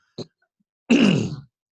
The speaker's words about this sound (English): But clear my throat.